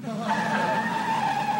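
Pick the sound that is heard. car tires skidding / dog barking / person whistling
car tires skidding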